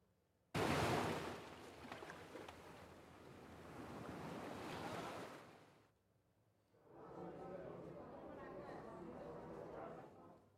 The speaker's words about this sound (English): All right there, Lord Mayor, we've got fireside, we have a fireside, I think we've got a beach, and we've got a pub, and we've got a boat, and we've got a forest.